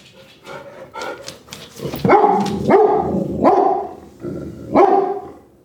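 dog barking

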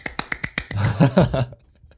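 hand clap

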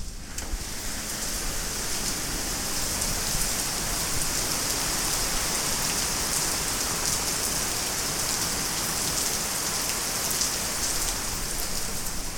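heavy rain falling outside

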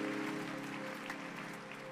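audience clapping

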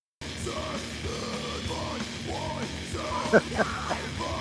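man yelling

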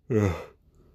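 yawn

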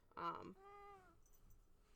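cat meowing

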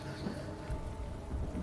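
rain falling

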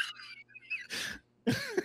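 cough

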